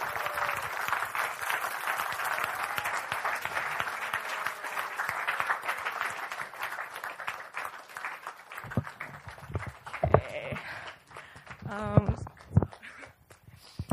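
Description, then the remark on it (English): A crowd applauds steadily with dense, overlapping clapping for several seconds, welcoming a speaker coming up to give a eulogy, then the clapping thins out and fades, leaving a few scattered claps and shuffling noises. “So as each one comes up, can we give them a round of applause just to, and keep on clapping until they start?”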